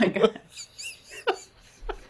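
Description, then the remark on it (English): A person imitates a dolphin, letting out a quick burst of high, squeaky chirps and whistles followed by a few short squeals, fairly loud. “Because she did make noises. Like a dolphin, right?”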